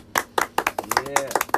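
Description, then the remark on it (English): A quick, steady run of about eight or nine sharp hand claps, fairly loud, with a faint voice briefly audible underneath partway through; clapping for Mr. Kraft's 78th birthday. “Clap for Bob.”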